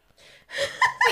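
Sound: heavy gasping breathing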